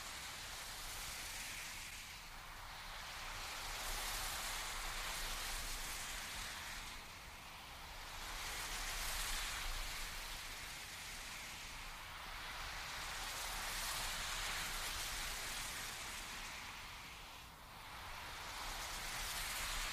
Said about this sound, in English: Found these pads and they sounded heavenly. Deep ocean sounds.